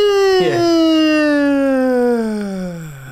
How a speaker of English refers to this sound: And do you like the wailing of the sirens, Redman? Oh, as the car turns off at that.